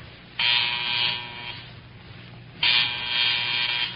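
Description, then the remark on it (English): A phone buzzer is buzzed as a check of the phones, sounding twice in loud, harsh electric bursts, the first about a second long and the second longer and still going at the end, with a low hum underneath and no talking. “You gonna buzz the phone?”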